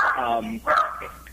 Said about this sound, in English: I apologize to the dog in the background. She doesn't say a word all day up until I'm on one of these things.